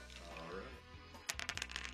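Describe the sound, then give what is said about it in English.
Dice clatter across a table in a quick burst of sharp clicks and bounces that settle after about a second, following a stretch of low background voice. The dice are rolled to set a player's handicap for a quiz bonus round and come up five. “we allow him to roll the dice”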